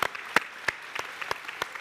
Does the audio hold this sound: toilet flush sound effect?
no